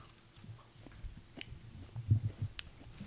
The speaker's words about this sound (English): I chewed it twice and then swallowed it.